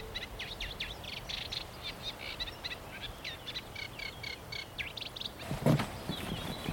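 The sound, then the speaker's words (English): A chiffchaff sings among other birdsong at Wicken Fen, its repeated high two-note chirps running steadily throughout over a low background rumble, with a brief louder burst near the end. “Overlaid with the chiff chaff.”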